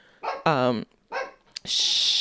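dog barking

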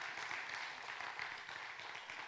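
audience clapping

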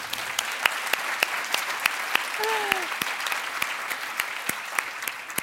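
theatre audience applauding

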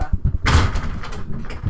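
door closing

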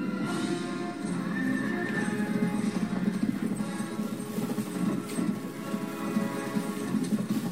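horses clip-clopping and neighing

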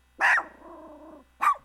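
puppy barking

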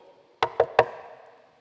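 knocking on a door

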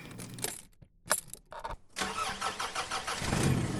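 car engine starting

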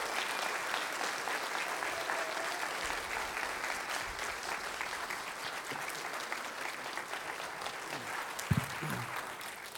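audience applause

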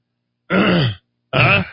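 throat clearing

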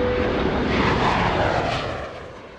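airplane engines

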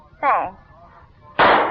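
single gunshot

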